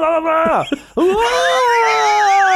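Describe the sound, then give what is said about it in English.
A man imitates Tom Cruise's dramatic movie scream: a loud wail slides downward and breaks off, then a second sustained, strained scream holds high with a wavering, trembling pitch. “What about when, didn't you do an impression of Tom Cruise's scream?”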